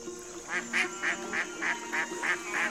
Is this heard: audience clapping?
no